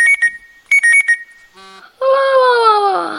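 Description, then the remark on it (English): An alarm clock rings in two quick bursts of high electronic beeps, followed by a brief buzzy tone and then a long, loud, drawn-out yawn that slowly falls in pitch. “Is that my alarm?”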